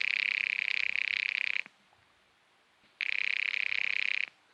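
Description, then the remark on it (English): A telephone rings twice during a call placed to a widow, each loud, trilling burst lasting about a second and a half, separated by a short pause of silence. No one speaks. “Expense account item 4, 10 cents, another phone call.”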